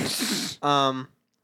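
A single loud sneeze: a breathy hissing burst that snaps into a short voiced 'choo,' then silence.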